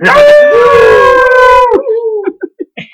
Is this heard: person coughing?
no